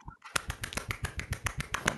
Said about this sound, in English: I can clap with one hand.